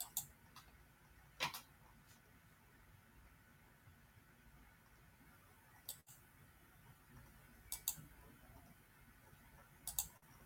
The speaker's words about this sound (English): Keep clicking on the wrong button here.